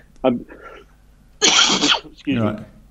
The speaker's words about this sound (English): You're going down with something. I just had a bat for lunch and I've just got this cough.